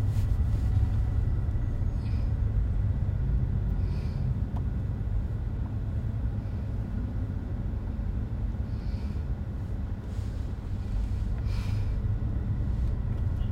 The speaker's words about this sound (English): Which, I guess you could if it's, since it's bumper-to-bumper traffic jam.